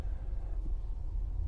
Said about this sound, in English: But I'm still trying to get this recording done, and the traffic is still going to happen.